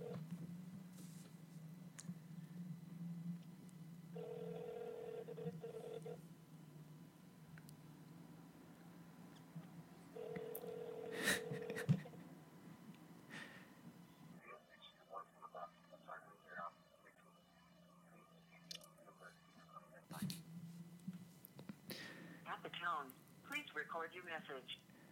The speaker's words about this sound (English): Okay, I'm calling him. I know what I'm gonna say. Oh, wait. And put him on speaker. Don't hold it too close. You'll be able to hear it.